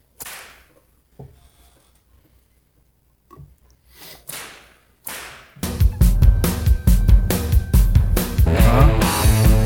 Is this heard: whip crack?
yes